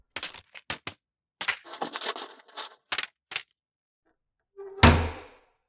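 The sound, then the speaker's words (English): A mailman opens the mail slot in a front door with a quick run of sharp clicks and scrapes, then after a brief pause a single heavy thud as the letters drop onto the floor. “Suddenly, they hear the sound of the mailman opening the mail slot in the front door. And then the sound of letters hitting the floor.”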